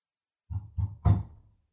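Three heavy, booming knocks on a room door at an inn, made as Foley, land in quick succession, each louder than the last, the final blow ringing briefly. No voices and silence on either side.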